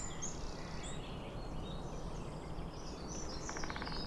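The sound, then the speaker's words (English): Near the end, a woodpecker drums on the wood of a tree beside a canal in a quick, even burst of rapid taps lasting under a second, over steady outdoor background noise with high bird chirps scattered throughout. “Hammers on the wood, rather than singing, hammers on the wood to send out its message that it's fit and able to mate, and this is its territory, and keep away other woodpeckers.”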